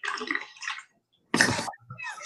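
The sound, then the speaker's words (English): Water sloshes and gurgles from a giant jug in several bursts as a person takes a drink from it, with a short silent pause in the middle and a loud splashy gulp after it, no talking. “Excuse me, I gotta take a drink in this giant jug for a second.”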